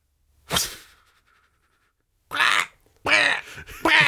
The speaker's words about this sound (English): What the fuck is that? Thunk, thunk, thunk, and quack. Oh, shit, I got like four birds. Hey! The quack was the boomerang slapping against wood.